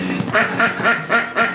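A duck quacks five times in quick, steady succession, each call a loud, nasal, raspy burst with no other sounds around it, from the Return to Nukem High movie trailer by Troma Films.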